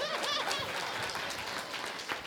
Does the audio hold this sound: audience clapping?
yes